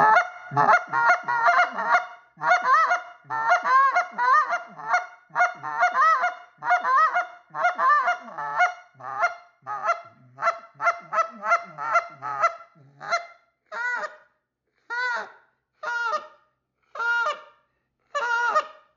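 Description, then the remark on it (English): An Old Man 2.0 goose call blown in a steady run of soft, clucking finesse honks imitating geese. The honks are dense and rapid at first, then thin into spaced single notes toward the end, clear with no talking. “Just kind of finesse them like that and talk goose. So that's the old man 2.0.”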